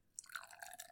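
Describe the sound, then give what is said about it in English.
A dry hop IPA from Brewery Omegang pours from a can into a glass, a soft, steady splashing stream with a fizzy, bubbly edge, fairly quiet, with no voices over it. “Ooh, what a beautiful pour that was.”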